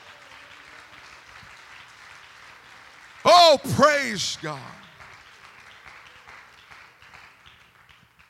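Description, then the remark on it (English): Steady applause from a large crowd, with a man's loud, excited shout rising over the clapping partway through. “Clap your hands.”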